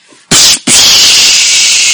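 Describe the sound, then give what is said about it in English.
An atomic bomb explosion sound effect: a sharp burst of noise, a split-second gap, then a loud, sustained hissing roar that rumbles on without fading, much like crashing water. No one speaks. “It's an atomic bomb.”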